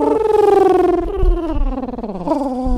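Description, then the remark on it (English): A Jetsons-style futuristic cartoon flying-car effect: a loud, warbling electronic tone that wavers as its pitch slides gradually downward, then jumps back up near the end, lasting about three seconds with no talking. “What if your car made that whip. Jetsons noise?”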